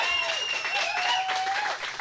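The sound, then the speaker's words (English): A live audience at the soundstage at Captain Quack's applauds steadily and loudly, the dense clapping filling the whole moment, with a few whistles and cheers rising over it. “Let's get a big round of applause.”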